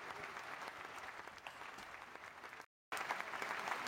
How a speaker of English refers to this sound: Y'all clapping y'all hands.